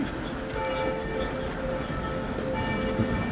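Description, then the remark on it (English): Church bells ring steadily with overlapping, sustained tones over a continuous outdoor background hum. No one speaks. “As church bells rang out, I held up some photos from 33 years ago of my parents' apartment.”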